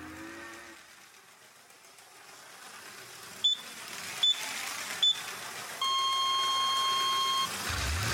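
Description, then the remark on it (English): A race start signal for 16 pilots lined up in turbo chairs on the starting line: three short, high electronic beeps evenly spaced, followed by a longer, lower sustained tone, over a low background rumble of engines. “The 16 pilots are lined up on the starting line and are just waiting for the starting signal.”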